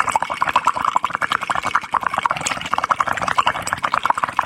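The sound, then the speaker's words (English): Steady, rapid bubbling as air is blown through a straw into water, a continuous burbling gurgle, fairly loud, held for several seconds with no voices. “It's blowing in a straw in water.”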